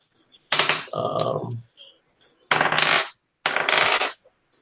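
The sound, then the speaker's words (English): Dice clatter across a table in three separate rolls for initiative in a tabletop game, each a brief burst of rattling clicks, with short silent gaps between them and no talking. “Not using the dice cam?”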